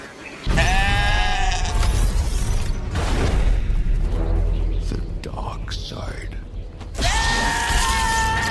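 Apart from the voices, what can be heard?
goats screaming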